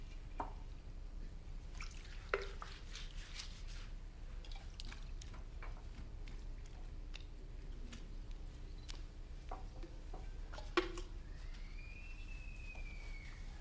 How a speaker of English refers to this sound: Then he poured some water into a wash basin and began to wash the disciples' feet and dry them with the towel around his waist.